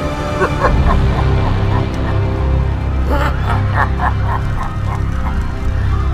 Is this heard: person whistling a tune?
no